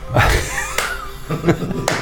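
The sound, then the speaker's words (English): Four slow, deliberate hand claps, made while striding slowly down stairs, evenly spaced with long pauses between them, each a sharp, crisp smack over a faint murmur of background sound. “He takes a long time striding down the stairs and he slow claps.”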